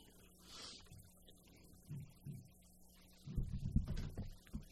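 A phone vibrates against a hard surface with incoming text messages in low, rumbling buzzes: a few short pulses followed by a longer, stronger burst of buzzing, with no talking.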